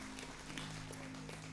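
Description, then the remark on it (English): An audience at a morning church service gives a clap offering to the Lord, a steady, dense wash of applause that holds an even loudness for the whole moment, with a low steady hum beneath it and no one speaking. “Let's give the Lord one more clap offering this morning.”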